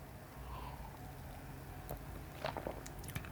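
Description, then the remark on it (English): A few wet swallowing sounds of someone gulping down a mouthful of Pilsner beer, clustered near the end after a quiet, steady background hum. “Sorry, not a sip, a gulp.”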